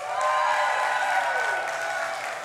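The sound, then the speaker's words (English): A small but loud crowd in a room cheers and claps continuously for the Chiefs, voices whooping over a steady wash of applause, sustained for the whole stretch without letting up. “So, all right, who's cheering for the Chiefs?”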